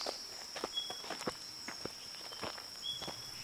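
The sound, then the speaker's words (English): Irregular footsteps crunch and rustle through dry brush as someone walks deeper into the bush, a steady walking pace of soft crackling steps, with a constant high insect buzz and occasional short chirps in the background. “As we walk deeper into the bush, we should begin to hear them.”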